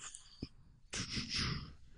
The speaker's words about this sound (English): He's breathing. He's like invoking the spirits.